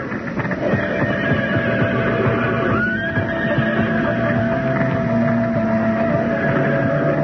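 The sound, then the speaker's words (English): Panicked horses whinny and neigh as a stable burns, amid a dense, continuous roar of chaotic noise, loud throughout, with shrill cries rising above the din. “You can't handle all those horses alone”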